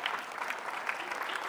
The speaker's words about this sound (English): And listen, amen, you can clap for that.